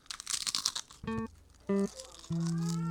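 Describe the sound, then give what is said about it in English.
About a second of crisp, crackly crunching from a final bite into potato chips, followed by a few steady, low hummed vocal tones with pauses between them. “Yeah, let me just grab the chips. All right. He's not doing it with the shrimp. And the final crunch.”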